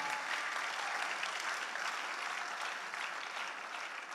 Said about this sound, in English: If you want to clap, you can clap to the glory of God.